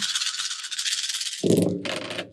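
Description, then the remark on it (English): Dice, rolled for a logic plus hacking check, rattle with a steady, bright clatter for over a second, then tumble out in a louder, heavier burst of rolling clicks before settling. No one speaks. “I need another dice.”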